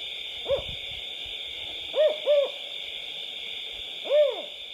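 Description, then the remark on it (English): A California spotted owl hoots four times: a single hoot, a quick pair, then one more after a pause. The hoots are clear over a steady high droning hum. “And when I was in grad school, I was doing some research out in the Sierra Nevada in California on the cutest, cuddliest creature there is, the California spotted owl.”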